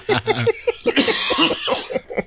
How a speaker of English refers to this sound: Had a bit of a coughing fit.